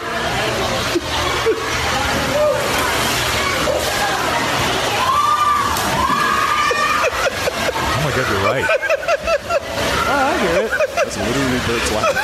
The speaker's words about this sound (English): I like the way people start screaming though when the guy goes into the tank. That's kind of weird.